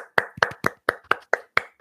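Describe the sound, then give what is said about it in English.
Light, polite golf clapping: a single pair of hands claps about eight times in a steady, even rhythm, each clap a soft, crisp smack with no voices over it. “Golf claps.”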